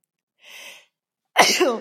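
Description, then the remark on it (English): A quick, breathy intake of air, then after a short pause a single loud, explosive sneeze with a voiced, tailing-off finish, on its own. “Oh, I'm going to sneeze.”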